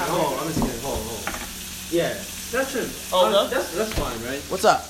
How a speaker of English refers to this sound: So, he's frying up the onions. What were you frying them up for? That's for the sauce. For the sauce.